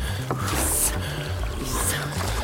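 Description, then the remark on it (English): Two rhythmic oar strokes splash and swoosh through water, fairly loud, with a low steady rumble underneath between pulls, as eight rowers row a boat together, putting power behind the strokes. “Now let's put some muscle behind those strokes.”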